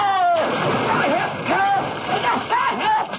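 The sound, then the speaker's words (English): A heavy splash as a person goes off a pier into a river, followed by continuous churning and sloshing as someone who cannot swim thrashes about, with loud cries and voices over the turbulent water. “Push you into the river. What are you talking about? Right off the pier!”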